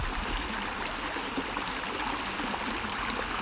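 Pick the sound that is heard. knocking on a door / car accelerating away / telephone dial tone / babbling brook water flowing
babbling brook water flowing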